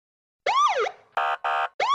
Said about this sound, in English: Sirens blaring, red and blue lights flashing.